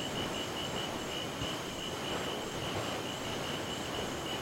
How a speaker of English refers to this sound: You watch the fireflies continue to dance and listen to the steady sounds of the boat's engines.